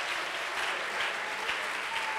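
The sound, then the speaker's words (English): An audience claps hands together in worship to the Lord, in a dense, steady wash of applause, many overlapping claps blending into a continuous crackle with no voices on top. “Come on, let's clap our hands and lift our worship unto the Lord.”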